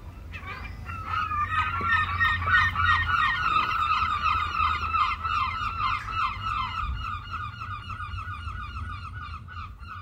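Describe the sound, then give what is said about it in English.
A flock of herring gulls calling loudly and continuously, harsh overlapping cries piling on top of each other, with a low rumble of wind or traffic underneath. “And although the behaviour of rock dove is absolutely parallel to the behaviour of herring gull, I think because herring gull's that little bit bigger, noisier, seemingly more aggressive, then we don't like it.”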